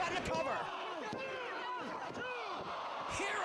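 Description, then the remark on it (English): A wrestler being kicked in the face during a 2007 wrestling match: several sharp, loud smacking impacts land at irregular intervals over a constant murmuring crowd, with voices talking throughout. “Someone's getting kicked in the face.”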